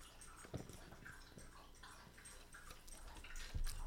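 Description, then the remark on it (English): Wet slurping and sipping, as someone drinks water during a water break in a few irregular gulps with soft smacking noises, with no one talking. “Team NXT here listens to your slobber and your hydration”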